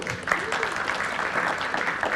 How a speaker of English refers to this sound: a little round of applause.